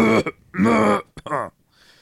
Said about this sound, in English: You're still coughing, by the way.